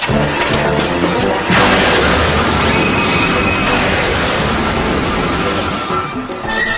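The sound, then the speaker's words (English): A sudden loud smack of a head striking Wonder Woman's invisible jet, a crashing impact about a second and a half in, set within a dense, roaring wash of sound that continues for several seconds. “He hit his head on the invisible plane.”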